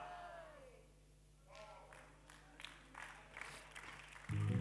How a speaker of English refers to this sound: If you are clapping, clap.